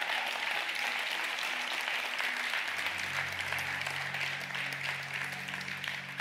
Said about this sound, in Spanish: Hoy yo creo que Él se merece un mejor aplauso que ese.